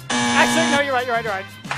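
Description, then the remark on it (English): A single loud, harsh game show buzzer, set off by pressing a buzzer button, blares for under a second, then cuts off as a voice starts talking. “I hit the buzzer button.”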